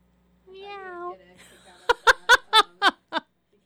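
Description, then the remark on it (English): Choir voices imitate kitten mewing in a parody of Bella Ciao, starting with one drawn-out, wavering mew and then six quick, loud, evenly spaced meows sung in a steady rhythm, clear. “We are kittens, we are mewing Bella Meow, Bella Meow, Bella Meow.”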